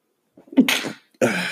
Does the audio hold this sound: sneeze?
yes